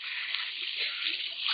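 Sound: water running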